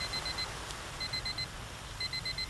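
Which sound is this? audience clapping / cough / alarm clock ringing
alarm clock ringing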